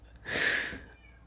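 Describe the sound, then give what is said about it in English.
A single drawn-out cat meow, moderately loud, swelling and fading over about half a second, with no talking during it. “sorry, do you hear the kitty? Yeah, now I hear the cat.”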